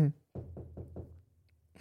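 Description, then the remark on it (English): Four quick, evenly spaced knocks on a door, fairly loud, with brief bits of voice just before and after. “I'm knocking on your door.”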